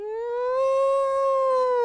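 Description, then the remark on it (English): A war siren wails in one long, steady tone that rises slightly at the start and holds level, loud and harmonically rich, with no talking over it. “It's a war siren.”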